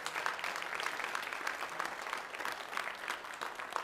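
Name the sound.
audience applauding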